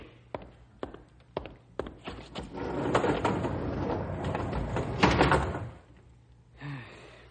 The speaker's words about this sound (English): Close the doors